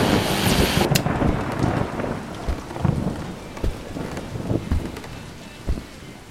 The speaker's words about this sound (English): Just in, there will be a cold front pushing through New England, bringing heavy rains and high winds to the greater Boston area, on up to parts of Western Mass. Some say this could be the biggest storm of the year.